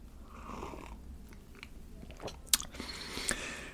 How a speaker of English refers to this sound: Sip of full fat fluids. Excuse me for just one moment.